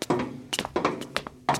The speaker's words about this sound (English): Well, here we are outside her door. Mom, it's me, Bender, your middle son. Can I come in? Are you decent? How's she gonna hear you knocking?